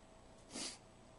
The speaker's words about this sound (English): Sorry for the sniffles.